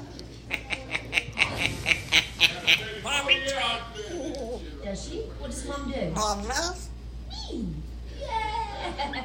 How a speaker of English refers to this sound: This one's called the best talking parrot ever. I doubt it is.